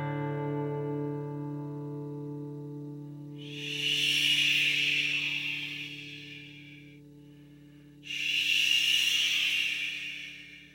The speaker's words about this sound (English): That's the ocean.